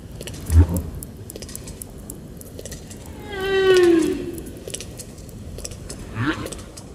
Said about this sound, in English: Snapping shrimp raise sparkling clouds of sound by repeatedly slamming shut their tiny claws. These common animals of warm waters split from other crustaceans about 150 million years ago, although their snapping claws may date to more recent times.